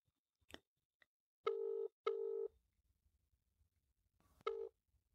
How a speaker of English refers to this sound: I've got both microphones in my hand and I'm going to call her and see if I can get her on speakerphone and hold the microphone up to the speaker on my phone.